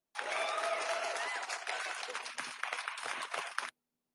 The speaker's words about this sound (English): Okay, thank you to be part of this mini podcast. We have to give you a round of applause.